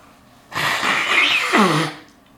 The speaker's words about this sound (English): So what I'm going to do is I'm going to turn around and I'm going to take a quick little break before we answer these 17 questions. And I'm going to blow my nose.